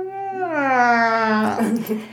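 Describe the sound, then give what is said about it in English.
A voice imitates a cat's growl, mimicking a cat named Refugee who sat in the corner growling at her new siblings from another litter: a drawn-out, whining tone that slides slightly lower in pitch, then breaks into a short, raspy, breathy rasp. “And for the first 2 days, she just sat in the corner and growled at them.”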